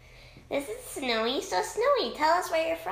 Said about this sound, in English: If you're wondering why it sounds really echoey, we're actually on a trip right now.